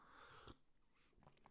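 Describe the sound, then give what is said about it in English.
A quick slurping sip of coffee lasting about half a second, followed by faint swallowing and small mouth noises, with no one talking. “I'm going to just take another sip of my coffee over here.”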